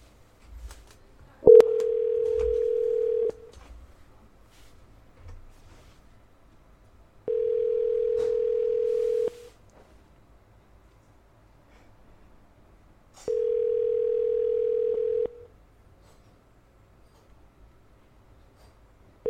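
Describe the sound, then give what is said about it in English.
A phone line ringing on the caller's end during a call to a WinCo Foods store: three steady two-second ring tones separated by long silent gaps, clear and fairly loud, with no one speaking. “Timer ready, and the timer starts whenever they answer the phone.”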